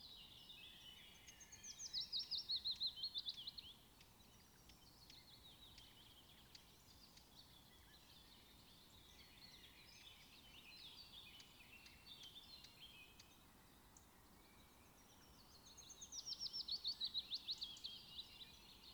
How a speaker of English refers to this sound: The forest is alive with the harmony of bird songs, whose melodies create a backdrop to your hike.